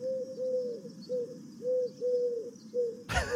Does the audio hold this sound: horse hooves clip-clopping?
no